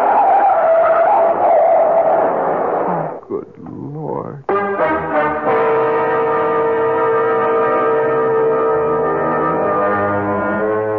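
Loud screech of truck tires skidding for a few seconds in a near-collision, a brief jolting pause, then a sustained blaring tone that holds to the end.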